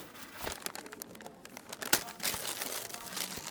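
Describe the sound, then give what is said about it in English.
Wrapping paper crinkles and rips as a gift holding a label maker is unwrapped, in a steady, busy flurry of rustling, with one sharp tear near the middle and no one talking. “But I do love gifts.”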